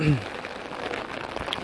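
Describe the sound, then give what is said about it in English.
Steady, fairly loud rain patters and hisses all around as someone walks outdoors among green hills on a cloudy day, with a brief murmur of a voice right at the start before the rain carries on alone. “I smoked weed before I left, so I'm kind of high right now, walking in the rain.”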